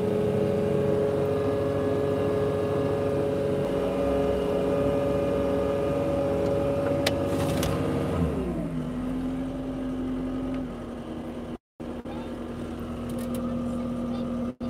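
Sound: leaf blower engine running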